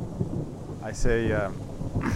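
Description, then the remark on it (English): A storm rumbles steadily with low, rolling thunder and the hiss of rain, loud, while a brief tonal whine rises and fades midway through. “And he's now looking out over the storm as well.”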